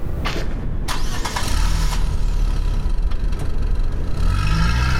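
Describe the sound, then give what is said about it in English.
A car engine turns over with a few sharp mechanical clicks, then settles into a steady, low rumble as it idles, with a slight rise in pitch near the end; the car is being pulled around to park behind a cabin as a snowstorm picks up. “You can head to cabin 4 and park around back.”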